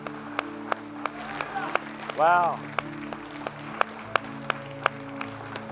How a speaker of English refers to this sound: Come on, stand with me one more time. Let's give the Lord a hand clap of praise and a celebration answer this morning. Hallelujah.